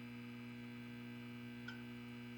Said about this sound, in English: You can hear a low hum of electricity.